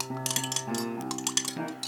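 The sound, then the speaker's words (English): Ice cubes clink and rattle into a glass of ginger beer for a dark and stormy cocktail in a quick flurry of bright, sharp taps over about two seconds, with a faint ringing tone beneath and no one speaking. “And then a little bit of ice.”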